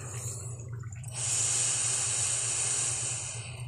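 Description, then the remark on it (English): A single long, airy deep breath taken while seated with hands together in prayer position, a steady rushing hiss lasting a couple of seconds over a faint low hum, with no talking. “And let's take a few breaths together.”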